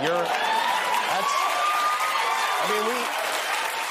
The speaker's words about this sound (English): These people are maniacs, and they got a whole crowd and a bunch of people at home on TV clapping and cheering for rest in peace, you Wheezy unvaccinated monster.